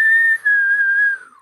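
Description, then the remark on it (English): A person whistles a single sustained note, clear, with a brief dip near the start before the tone holds steady and then slides slightly downward as it fades out. “No, give me a clean whistle for this is, I'm going to save this to my Foley file.”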